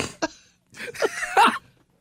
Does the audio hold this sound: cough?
yes